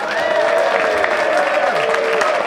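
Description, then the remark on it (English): An audience claps loudly and continuously as Richard Herring is welcomed, a dense, steady wash of applause that holds at full strength throughout, with a sustained musical tone running underneath. “It would mean more if I hadn't done a special sign to make you applaud.”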